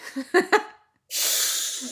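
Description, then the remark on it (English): A person imitates a cat's hiss: after a couple of short breathy laughs and a pause, a loud, sustained, airy hiss rushes out for nearly a second with steady intensity. “Can you give us a hiss?”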